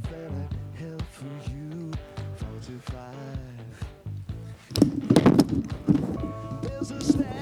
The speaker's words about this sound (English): Well, first I decided I was going to knock my microphone off of what I had. I was wondering what happened there. It sounded like a lot of noise.